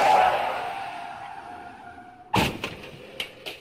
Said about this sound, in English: Yeah, you could choose the sound. A horrible car accident. Okay. That's fucking awful.